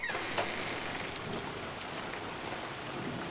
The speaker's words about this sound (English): It is raining. And that's raining. What, 70 degrees and sunshine? No, it's about 45 degrees and just rain, constant rain. Open your window so I can listen.